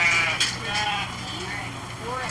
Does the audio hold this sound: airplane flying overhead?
no